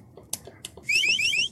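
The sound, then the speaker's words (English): A shrill whistle is blown in a rapid burst of about four rising, warbling chirps, loud and high-pitched, preceded by a few soft clicks and taps. “My whistle's not good enough.”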